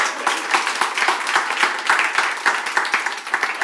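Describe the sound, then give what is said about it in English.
A live-show crowd applauds the curator of the show's music, Sarah Ladipo Manyinka, many hands clapping in a dense, continuous patter of sharp, bright claps that holds an even loudness throughout without any talking. “Could we applaud our wonderful curator?”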